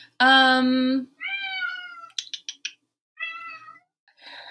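A cat, Mr. Lucas, meows loudly and insistently: one long, strong cry followed by several shorter, higher-pitched meows and brief chirping yowls, with short pauses between them and no talking.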